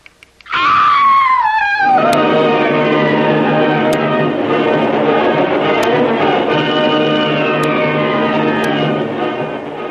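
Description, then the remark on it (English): A locked door in Doc Beard's plantation house creaks slowly open in one long, loud, groaning moan that bends in pitch and drags on for several seconds, with faint ticks at intervals and no voices. “the door she has so carefully locked opens slowly and stealthily before her unbelieving eyes”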